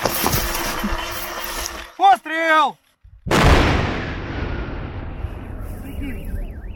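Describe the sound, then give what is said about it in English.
A single loud detonation from a controlled explosion of unexploded bombs booms after a short hush, its rumble trailing off for several seconds. Before the blast come a few rising, whistle-like tones over steady outdoor noise. “They blow up the cluster bomblet on the spot and then move the heavier bombs to a different location for a massive controlled explosion.”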